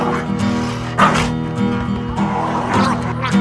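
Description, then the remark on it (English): A dog gives a few sharp barks at irregular moments and whimpers in between, fairly close and loud, over a steady, humming tonal background. “Good dog.”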